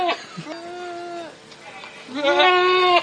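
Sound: goat bleating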